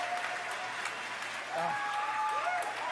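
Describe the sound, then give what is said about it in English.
A crowd cheers and applauds continuously at the Falcon Heavy rocket test flight, a broad wash of clapping and shouting with scattered whoops and a few rising whistles cutting through at steady loudness. “Well, if you could hear all that cheering, it was an outstanding test flight of the Falcon Heavy.”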